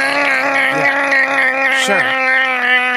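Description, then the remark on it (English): A voice imitates a chainsaw used for chopping trees down, with a sustained, buzzing drone for about three seconds, holding a steady pitch with slight wavering and a brief dip near the end. “How much easier is it to know you're there than when you're chopping fucking trees down with a saw that goes...”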